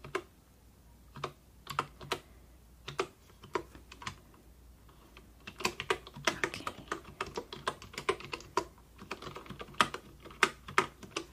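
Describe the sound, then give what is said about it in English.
Keyboard typing in uneven bursts, sparse clicks at first, then faster, denser keystrokes from about six seconds on, fairly quiet, with no voices, during a soft-spoken customer-service check-in role-play at an aquarium, adding a purchase to a customer's account. “Customer Service, Typing, Page Turning”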